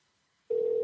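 A steady electronic phone tone switches on halfway through and holds at an even level to the end, loud and clear with no voices, like a line ringing out on an outgoing call.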